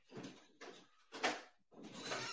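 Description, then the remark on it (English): A back door being opened for a puppy that rang the back doorbell, heard as four short scraping, rattling bursts in quick succession, fairly quiet, with no talking. “I open the dang thing, and now she's just looking at the door.”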